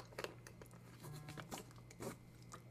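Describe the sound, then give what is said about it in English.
Quiet sips of water, with a few soft slurps and swallowing clicks spaced irregularly, followed by a brief louder bump at the end. “Let us all now take a sip of water, because before all good things begin, there is water.”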